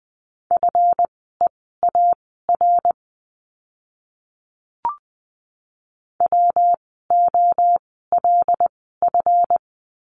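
Morse code at 20 wpm sending practice words for a lesson on the letter F: a steady mid-pitched tone keyed into quick dots and dashes, sent in two bursts of letter groups. A silent pause with a brief click separates them.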